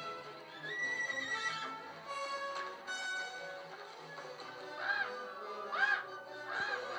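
A horse neighs repeatedly and loudly, with wavering high whinnies rising and falling across the whole stretch and no voices present.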